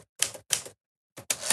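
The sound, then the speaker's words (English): Keys of a real manual typewriter, with a microphone turned toward it, strike with loud mechanical clacks, two quick hits, a short pause, then two more. No voices are heard. “In honor of what I just said, I'm going to type on this typewriter.”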